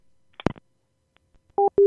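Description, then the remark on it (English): A sharp click like a handset hanging up, then the steady beeping of a phone line's disconnect tone: loud, evenly spaced tone bursts with no voices. “It took you all the way off the phone.”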